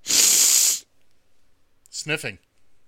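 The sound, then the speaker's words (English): One long, loud, harsh sniff rushes in, followed by a short pause and then a brief voiced vocal sound. “Sniffling. Because he'll be on that Adderall tonight.”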